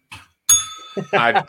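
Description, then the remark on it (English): A single bright bell strike rings out and lingers briefly with a metallic shimmer, fairly loud, as a voice begins talking right after it. “I missed a bell then.”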